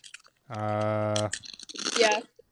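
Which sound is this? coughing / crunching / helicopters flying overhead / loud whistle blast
crunching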